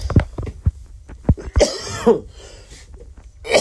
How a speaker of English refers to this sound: That's not COVID, that was a cough.